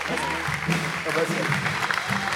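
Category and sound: crowd, audience applauding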